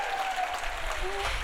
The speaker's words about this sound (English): come on down, give them a round of applause.